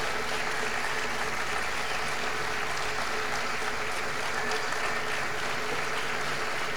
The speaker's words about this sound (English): Everyone is cheering. So am I.